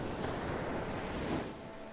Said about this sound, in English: We pretended we were at the beach, so we wore bathing suits and sunblock and put on Sounds of the Ocean on my phone.